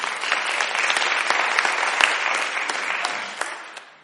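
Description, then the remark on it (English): People clap steadily for about four seconds as a morning clap offering to the Lord, dense and sustained applause that fades slightly toward the end, with no voices standing out. “Somebody give the Lord a clap offering this morning.”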